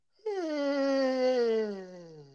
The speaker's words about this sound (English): That's me yawning, if you couldn't tell.